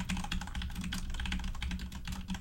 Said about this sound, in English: You're typing.